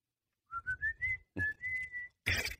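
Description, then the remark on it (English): Loud human whistling at a baseball game: a run of short, rising notes, then a longer sustained whistle over a low background rumble, ending in a brief burst of harsh noise. “I loved listening to those whistles.”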